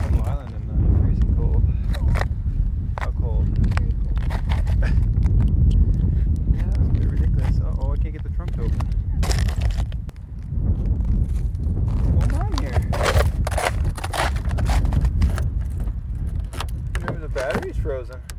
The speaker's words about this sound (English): That was our cold and windy walk out around Middle Island. It's beautiful in the summer. Even if there's no wind, it's a nice place to walk around. It's a small island. I think it's only 15 acres maybe.